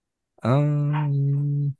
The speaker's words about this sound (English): Oh, sorry, my dog's barking in the background.